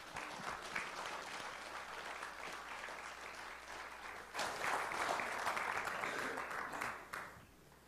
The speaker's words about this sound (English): But we are excited for you to have these Bibles. These are yours to keep. And, you guys did great. Can you guys give a round of applause for these guys?